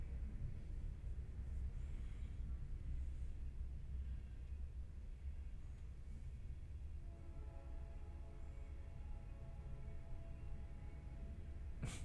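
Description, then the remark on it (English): A train rolls past with a steady, heavy low rumble that fills the whole clip; about halfway through, a sustained droning hum of stacked tones rises over the rumble. No voices. “There's a train going by. I hope you can hear it.”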